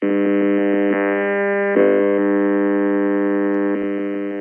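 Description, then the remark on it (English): A cordless DECT phone's radio emissions, measured and played back as sound through a computer program: a loud, steady electronic buzz, rich and harsh, with a quick train of rhythmic pulses at the start and a brief flutter near the end. No talking. “This is a cordless decked phone.”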